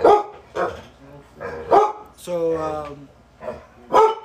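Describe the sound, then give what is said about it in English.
A guard dog named Shiva barks in loud, repeated bursts, about half a dozen barks spaced irregularly, with a drawn-out, higher whining yelp partway through. “Our bodyguard, Shiva. That's how we train him right there. Every time you hear movement, who did?”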